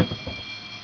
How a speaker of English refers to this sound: Hey, there's a fire alarm in my building. Yay.